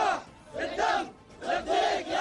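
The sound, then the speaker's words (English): Houthi militants chanting and shouting together while celebrating and dancing aboard a cargo ship they seized off the coast of Yemen in the Red Sea, loud voices rising and falling in rhythmic bursts in about three waves with brief dips between them. “Houthi militants celebrating, even dancing, aboard the cargo ship they seized off the coast of Yemen in the Red Sea.”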